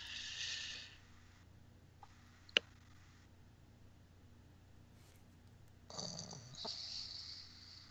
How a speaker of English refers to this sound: I was snoring.